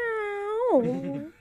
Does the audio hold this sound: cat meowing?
yes